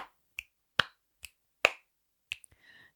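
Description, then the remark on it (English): A quick, uneven series of about eight sharp claps and finger snaps, each a crisp, bright crack with silence between, plus a faint, brief tonal hum near the end. No one speaks. “So you're like clapping with your talons and snapping with your feathers?”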